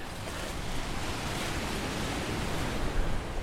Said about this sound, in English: I'm headed to the Pacific Ocean. Wow. Big whitecaps crashing in and sea stacks behind.